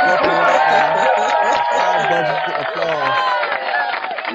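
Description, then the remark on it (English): A played applause sound effect: a loud crowd cheers and applauds for about four seconds, with whoops and shouts layered over steady clapping. The sound stays dense throughout, then eases slightly at the end. “And hopefully this will work again, these technical difficulties, but you deserve the high budget applause again.”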